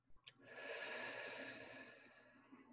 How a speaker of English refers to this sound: If that doesn't happen, you just take a few breaths. So you would breathe in through your nose and out through your mouth.